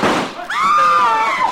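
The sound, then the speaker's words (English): A single sharp gunshot bursts out, then gives way to a sustained, high-pitched wavering tone that holds for about a second before trailing off. “Why, that fool female, she stepped right into that shot.”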